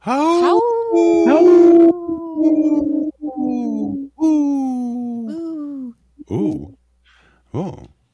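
animal, wolves howling

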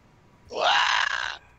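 sound effect, wilhelm scream sound effect

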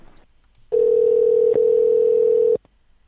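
signal or alarm, telephone tone

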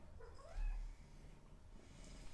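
animal, cat meowing

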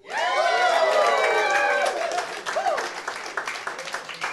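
crowd, audience applause and cheering

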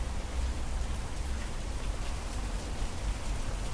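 nature, rain falling outside

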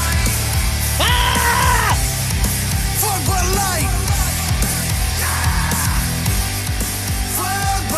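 human body sound, scream

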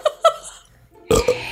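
human body sound, burp

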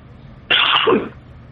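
human body sound, cough

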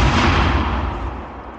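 sound effect, explosion sound effect

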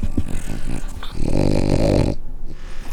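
animal, dog growling and snorting

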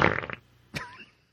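human body sound, fart

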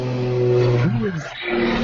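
vehicle, airplane passing overhead

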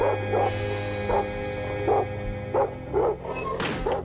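animal, dog barking

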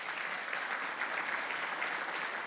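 crowd, loud audience applause

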